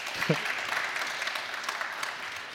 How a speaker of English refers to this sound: You know what that sounds like? That sounds like people clapping for disappointment.